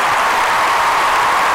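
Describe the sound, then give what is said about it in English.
A stadium applause sound effect played for a birthday shout-out to Spraga Benz, dense steady clapping and crowd noise that stays loud and even for its whole brief length, with no voices standing out. “All right, so let's get the stadium applause.”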